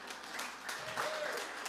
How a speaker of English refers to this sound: You can applaud us. Thank you.